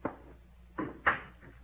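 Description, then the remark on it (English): A door swings shut: a soft wooden clunk, a second thud, then a sharper, louder latching knock and a faint rattle settling after, with no voices. “Close the door.”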